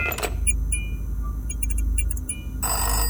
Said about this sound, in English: As the phone rang, I remember freezing.